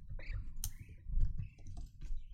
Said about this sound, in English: I'm just going to walk all over the keyboard.